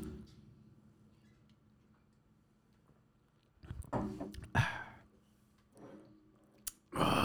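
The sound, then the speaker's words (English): Beer is gulped down after a few quiet seconds: a cluster of wet swallowing sounds, a short pause, then a couple more gulps at the end. No one speaks. “Are we going to kill this? Because I feel like we didn't get that much of this one. And I'm already like one more gulp, two more gulps.”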